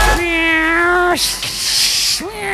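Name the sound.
cat meowing and hissing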